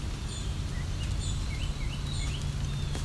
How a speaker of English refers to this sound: Some song sparrows.